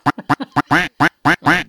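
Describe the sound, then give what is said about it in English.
A person imitates a disco duck with a quick run of about eight loud, nasal quacks in a bouncy, rhythmic pattern, with no other talking. “I can also do a disco duck.”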